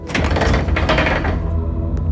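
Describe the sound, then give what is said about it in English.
A heavy, scratched and dented steel door scrapes and grinds open, a loud, rough rumble with metallic rasping that lasts about two seconds before easing off. “This leads to a basement or something. The steel door is scratched and dented to shit.”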